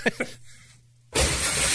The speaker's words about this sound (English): This is a confused deer crashing through a nursing home window, okay? And listen to this wild deer just bust through the window like the Kool-Aid man.